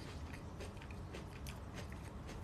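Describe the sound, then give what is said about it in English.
Someone chews and snacks on food, with soft, crunchy mouth sounds repeating in a steady rhythm for a few seconds. No talking. “And in between my chats, you hear me chewing and, you know, snacking it out.”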